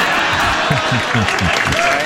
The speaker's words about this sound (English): The crowd groaned.